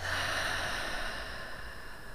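A single slow, deep breath taken in through the nose and out through the mouth during a breathing exercise, a soft, airy rush of air that stays steady and unhurried for a couple of seconds, with no talking.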